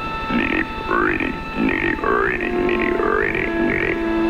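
A dense chorus of frogs croaks in a steady, overlapping rhythm, with rising, twangy calls repeating about every second over a low, pulsing throb, fairly loud, on a foggy night.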